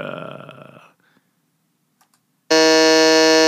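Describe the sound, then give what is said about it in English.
A loud, sustained electronic quiz buzzer blares abruptly after a brief stretch of near-silence, its harsh, steady tone holding without a break until the end. “What's your buzzer?”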